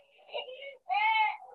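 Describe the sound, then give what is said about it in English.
A young boy squeals in two high-pitched bursts: a wavering first cry, a brief pause, then a louder, steadier squeal that trails off at the end. “This is not a scream. This is a squeal.”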